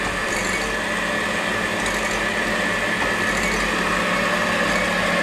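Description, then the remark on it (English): An electric mixer's beaters run without pause, beating egg yolks and sugar until creamy, a steady high-pitched motor whir with a gritty, buzzing edge that holds at an even, fairly loud level throughout, with no voices. “Stop the beaters.”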